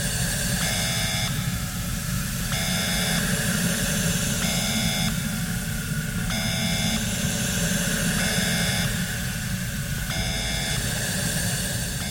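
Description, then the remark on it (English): During a decontamination procedure, a loud, steady roaring hiss like blasting air or spray fills the space while an electronic beep repeats evenly about every two seconds, six times in all. “Please close your eyes and mouth and do not open them until you hear beeping.”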